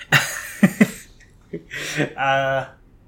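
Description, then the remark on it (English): Several harsh coughs in quick succession, followed by a rasping breath and a short, strained voiced sound as the coughing fit trails off. “see you guys in the next episode, where I'm not coughing because I ate too much coffee dough, or because I ate too much cookie dough and now I can't breathe.”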